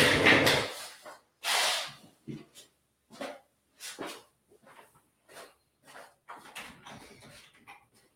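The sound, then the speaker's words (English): A dog wearing a cone pushes through a doggy door: a series of irregular clattering knocks and scuffs from the swinging flap, with rustling in between and no one speaking. “The cone makes it hard for him to go in and out the doggy door.”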